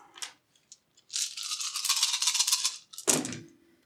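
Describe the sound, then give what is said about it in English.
A few light clicks, then a steady rattling of dice shaken for about two seconds, ending in a sharp clatter as they are tossed out and tumble to a stop. Eight dice plus three more are rolled during a tabletop game for a stealth attempt. No one speaks. “Give me 8 dice plus these 3.”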